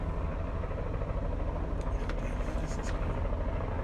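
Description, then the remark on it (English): A helicopter drones overhead, a steady low rumble filling the background throughout, with faint voices murmuring beneath it. “Helicopter's messing with my train of thought.”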